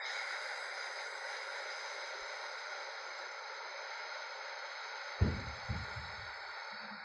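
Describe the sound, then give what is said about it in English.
A long, steady rush of deep breathing, in through the nose and out through the mouth, during a guided meditation, airy and hissing, with a soft low thump and rustle near the end. No one speaks. “Just keep breathing just like that, deeply, starting now until we're done with the entire guided meditation, deep breaths.”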